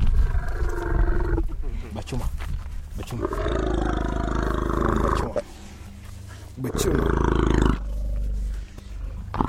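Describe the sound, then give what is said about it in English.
Deep, loud roars and rumbles from young elephants in a dusty clearing in Kenya on a bright, warm day burst out repeatedly, strong low-frequency bellows with harsher upper tones, separated by brief gaps. “On a bright, warm day in Kenya, young elephants romp in a dusty clearing.”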